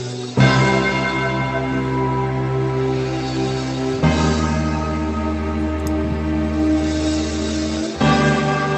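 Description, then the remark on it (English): Three deep, heavy bell tolls strike about four seconds apart, each ringing out with a long, rich sustain that fills the gaps between them, loud with no voices, opening a music mashup. “I love the idea of those bells, just like...”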